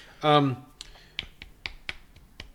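A brief vocal sound, then a run of about seven sharp, crisp slaps of a hand against a face, landing in a quick, fairly steady rhythm roughly a quarter second apart.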